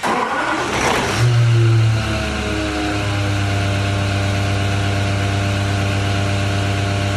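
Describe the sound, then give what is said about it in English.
A supercharged car engine fires up with a brief rising rev, then settles into a steady, loud, rumbling idle with a faint whine layered on top, with no talking. “What kind of engine is that idling? Sounds like something with a blower.”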